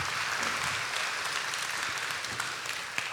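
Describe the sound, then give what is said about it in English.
A large church audience claps and cheers steadily to welcome a speaker coming up, a dense wash of applause at a consistent loud level throughout, with no speech standing out. “as he's coming up, to give a huge Clovis Hills welcome for him.”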